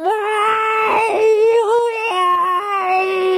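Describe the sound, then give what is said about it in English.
A person imitates a cat's meow with one long, loud, drawn-out wail whose pitch wavers, dips and steps back up, sustained for several seconds with no other talking. “I was woken up at 5:30 yesterday morning by a cat going...”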